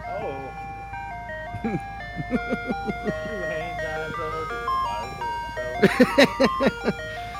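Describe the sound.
An ice cream truck jingle plays a bright, tinkling melody of steady repeated notes, fairly loud, with brief bursts of voices chattering over the tune.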